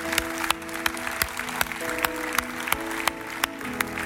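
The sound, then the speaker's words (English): An audience applauds those who have raised their hands, in a dense, sustained wash of clapping, with sharp louder claps punching through at a steady rhythm, over held musical tones. “Let's give them a round of applause, all those that have got their hands up.”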